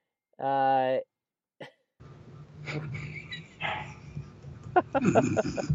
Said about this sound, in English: about your dog barking.